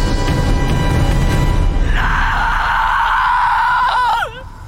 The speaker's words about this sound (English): she just like screams to the sky like Darth Vader when his wife dies